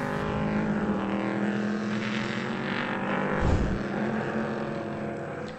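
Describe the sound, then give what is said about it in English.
Steady, loud drone of race car engines rolling along together, a continuous rumbling hum with a slight swell partway through as cars pass, no voices; the 26 cars of the IMSA Prototype Challenge at Sebring, 9 Mazda-powered MPC cars and 17 V8 LMP3s, rolling before the start. “So the car's rolling.”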